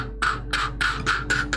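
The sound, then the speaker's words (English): Quick, evenly spaced footsteps, five sharp clacking steps in a brisk rhythm on a gray tile floor as a door swings open into a sleek steel bathroom with stalls, with no one speaking. “footsteps as a door just swings open, and we quickly pan up to see that we're in this sleek steel bathroom.”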